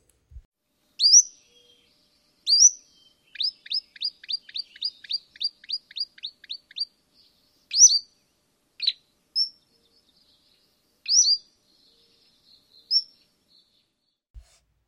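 A Cordilleran flycatcher's high, rising call notes repeat several times with pauses, broken by a rapid series of about a dozen short, even chips in the middle; clear and alone with no talking.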